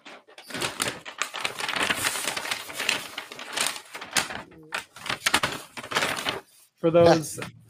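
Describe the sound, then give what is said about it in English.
Crisp crinkling and rustling of a paper bag with eye holes cut out being handled and pulled on over the head, a dense irregular crackle lasting several seconds, ending with a brief voiced murmur. “For those listening to the podcast and not watching the YouTube video, I'm donning my paper bag with the eye holes cut out to speak about this past Sunday's Lions debacle.”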